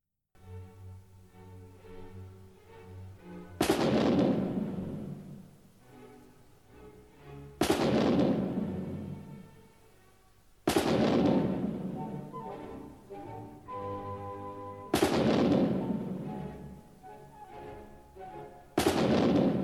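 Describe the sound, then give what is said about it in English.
Loud cannon blasts punctuate sustained orchestral music in a programmatic battle movement, five heavy booms arriving every few seconds, each bursting sharply and then rumbling away beneath the strings and brass. “its relationship to the Marlborough melody, making it obvious who lost this battle, as the cannon fire finally fades away”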